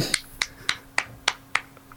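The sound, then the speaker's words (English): A single person claps steadily, about six crisp, evenly spaced claps followed by a couple of fainter trailing ones, with no voices. “Yeah, actually, clapping, literally clapping.”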